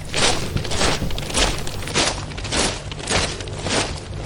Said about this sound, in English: because if you listen closely, you'll hear some stomping right now.